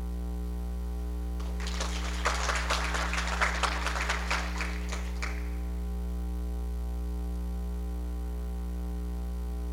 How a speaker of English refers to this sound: All right, one more round of applause for all our graduates. Great job, boys and girls. We're so proud of you.